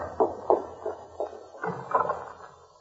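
Several dull knocks on a door, about four evenly spaced raps, followed by a muffled thumping shuffle, all fairly soft with no voices.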